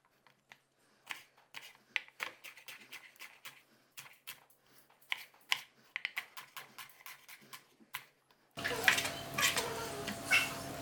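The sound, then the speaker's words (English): A knife dicing shallots on a chopping board: quick, uneven clusters of sharp taps, then a sudden steady hiss takes over near the end. “And then we've got to cut the shallots. So if you're any good at cutting shallots like me, so you've got to dice them.”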